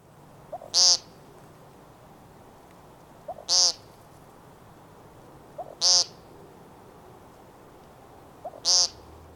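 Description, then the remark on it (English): Four loud, nasal buzzy peent calls from a male American woodcock at regular intervals of a few seconds, each preceded by a soft, low gurgling tuco note, heard close up against quiet night background. “But if you're up close listening, you'll notice he precedes each peent call with another gurgly little call. This is called a tuco.”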